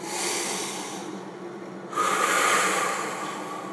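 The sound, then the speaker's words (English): A slow, deep breath: a long airy inhale, a brief pause, then a fuller, louder exhale, with no talking. “So as we take BREAD as an acronym, let's start with breathing.”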